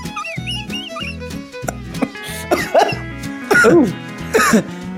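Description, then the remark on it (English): A run of loud, harsh coughs after maniacal laughing bursts out in the second half, several hacking fits close together, over a steady rhythmic background of music-like tones. “I'm always concerned when people's tongues come out when they cough.”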